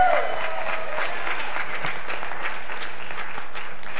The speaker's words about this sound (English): Eric's doing a great job up there, isn't he? Everybody give Eric a clap.